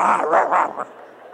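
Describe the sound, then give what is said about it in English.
A dog growls in a few rough, rumbling bursts, fairly loud, each surge rising and falling before the sound trails off into quiet. “Well, those intermittent growls are much like our nature when it comes to forgiveness.”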